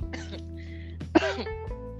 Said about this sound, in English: I was coughing earlier.